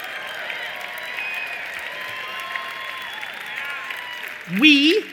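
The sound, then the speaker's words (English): A large audience applauds steadily for several seconds, a dense wash of clapping mixed with some cheers, before a single voice cuts in near the end. “Here's one that you won't clap up as much.”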